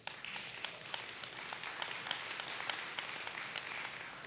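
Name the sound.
audience clapping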